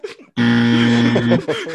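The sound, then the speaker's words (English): A loud, harsh game show buzzer blares in one steady, low, raspy tone for about a second, with brief bits of voices and laughter just before and after. “Yeah, you're right to give the buzzer to that because unacceptable to say just got my Jimmy waxed.”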